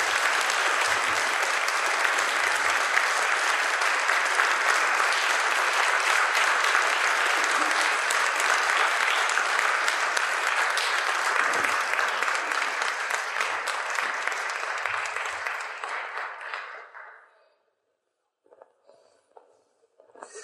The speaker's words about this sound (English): And so I would ask you to please give our next three speakers an incredibly warm round of applause as they come up to share part of their journey through this territory. Please help me welcome them to the stage.